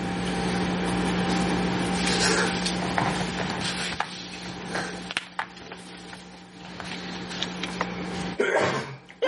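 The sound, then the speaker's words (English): A single sharp, breathy sneeze bursts out near the end, following a steady low electrical hum dotted with small clicks and taps. No one speaks. “Bless you.”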